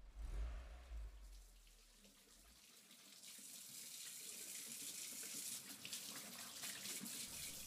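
A tap runs steadily into a sink, water splashing as a boy washes his hands at home, preceded by a brief low rumble; no one speaks.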